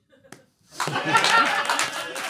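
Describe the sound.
A burst of clapping starts after a brief quiet moment and continues steadily, loud and dense, mixed with laughter and voices talking over it.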